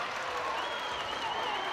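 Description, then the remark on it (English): A large basketball crowd roars steadily and loudly for a couple of seconds, upset over a foul call during a game, a dense wash of voices and noise without pause, with no clear individual words standing out. “And now the Blackman crowd upset.”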